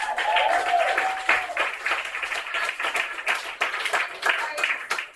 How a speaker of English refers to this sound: A round of applause for everybody that I met.